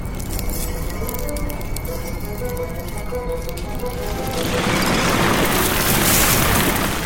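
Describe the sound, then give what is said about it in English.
A deep, continuous rumble of a shaking building that makes furniture shift and chandeliers shake, steady at first, then swelling louder and grittier in the second half as a rough, crackling roar fills in. No voices. “Rumbling follows the Nut Owl through the building, causing furniture to shift and chandeliers to shake”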